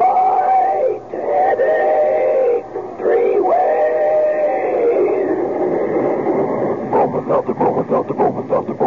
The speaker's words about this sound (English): Meanwhile, here's a friendly tip from an old pal, our famous talking Bromo Seltzer train.